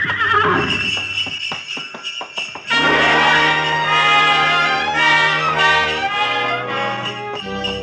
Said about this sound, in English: We glided out of the station, runners squeaking on snow, the soft pad of hooves, and the jangle of merry bells.